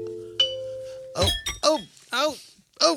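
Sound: chimes ringing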